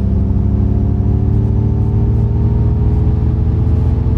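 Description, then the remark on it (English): An electric Mustang in its Unbridled drive mode accelerating hard with the pedal stomped, its synthetic engine sound a loud, steady, low harmonic rumble with a faint whir layered above, holding even for about four seconds with no voices. “It's got a little bit of that nice Mustang rumble.”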